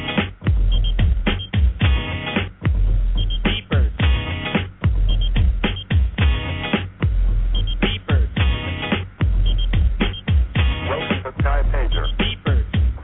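A hip-hop song plays loudly and continuously with a steady, punchy beat, its sound thin and muffled as if coming over a phone or small radio.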